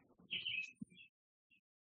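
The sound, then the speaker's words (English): A bird singing outside a window sings a short burst of bright, high chirps, then a brief single note after a pause. It is fairly faint. “You know, our answers, our interactions, our being with the world, with this bird that's singing outside the window, that appears to be outside.”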